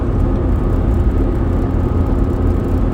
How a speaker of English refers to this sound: Oh, there's too many cars. What the fuck are y'all doing? Is it... Oh, I guess it is kind of rush hour.